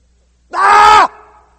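A single loud, harsh scream of frustration from a person, held for about half a second and cut off abruptly, leaving a brief fading echo in the room afterward.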